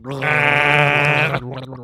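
A person gargles with a loud, steady, buzzing voiced tone that wavers for just over a second, then breaks off into softer, sputtering sounds.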